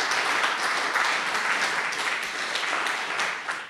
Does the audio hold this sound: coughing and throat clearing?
no